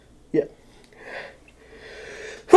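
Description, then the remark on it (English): A sneeze: a short sharp burst, then a couple of breathy, hissing inhales building up before a loud explosive release at the very end. No one speaks. “Bless you.”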